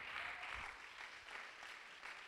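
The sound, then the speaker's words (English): A crowd claps steadily, many hands overlapping into a dense, crackling wash of applause that holds at an even loudness without a clear beat. “Clap your hands if you know that God is in control.”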